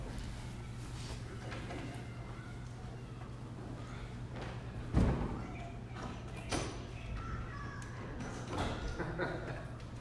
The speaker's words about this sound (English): Can someone shut the door for us? Just because there are kids who are having fun still.